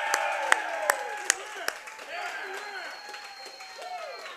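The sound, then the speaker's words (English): A live crowd at a Hy-Vee store on 64th Street cheers and whoops in a steady roar to get someone back on the field, with scattered sharp claps near the start and rising, sliding voices calling out through the din. “So right now for us live here, a cheer for Andy Reid to get him back on that field.”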